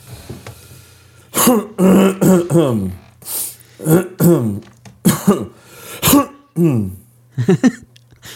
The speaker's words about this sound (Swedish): Har du harklat det klart? Nu tror jag att jag harklar mig klart. Ja, det känns så.